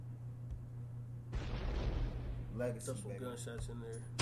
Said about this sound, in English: Yeah, throw some gunshots in there.